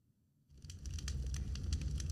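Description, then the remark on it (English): A crackling campfire starts after a brief silence, with sharp pops and snaps scattered over a low, steady roar. It sounds fairly quiet, with no voices. “That's a campfire sound.”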